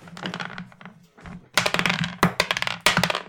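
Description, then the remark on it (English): Several dice clatter across a hard tabletop in quick bursts, sharp clicking rattles tumbling and settling, with a faint low hum underneath and no one speaking. “But let's roll.”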